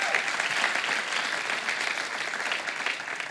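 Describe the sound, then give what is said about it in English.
An audience breaks into sustained applause for the Lord, a dense, steady wash of many hands clapping at an even loudness for several seconds, with no voices standing out. “Give the Lord a huge round of applause if you know what I'm talking about.”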